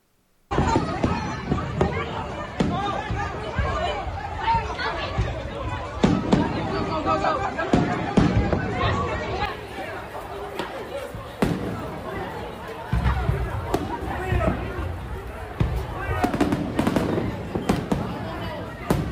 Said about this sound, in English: Stampedes everywhere. Because people were afraid that they were getting shot at. Because of fireworks.